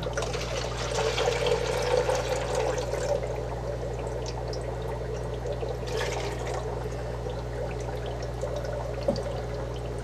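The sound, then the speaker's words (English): Tank water pours steadily into a container, topping it off, a continuous splashing trickle over a low background hum, with no one speaking. “And then we're going to go ahead and top that one off with the rest of our tank water.”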